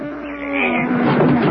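The stuck door of a crashed plane is yanked open by two people pulling together, with a loud, drawn-out groaning creak that swells and grinds for over a second, with no voices.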